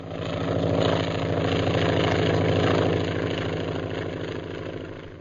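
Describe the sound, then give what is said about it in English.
A steady, loud propeller engine drone with a pulsing low throb, swelling slightly then easing as an airplane searching for people on the ground passes overhead, with no voices. “What's that airplane doing around here?”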